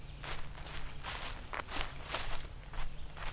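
Steady footsteps walking through a stand of red maple, white oak and hemlock, each step a soft crunching rustle of leaf litter, about two per second over a faint low hum, with no voices.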